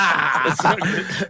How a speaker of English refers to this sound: Hold on, the cough button. you missed it. Did I fuck it? You missed it. You could hear the cough so loud.